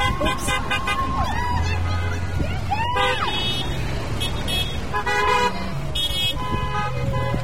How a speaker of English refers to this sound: More than 50 cars full of Sealands Grove area school district teachers paraded through Sealands Grove Thursday. Their goal was to get a glimpse of some students they say they're missing very much.